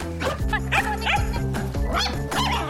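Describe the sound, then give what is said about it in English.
A Shetland Sheepdog barks repeatedly in quick, high-pitched yaps, loud, with a few whiny yips mixed in over a low steady hum. “Except for the barking and the shedding.”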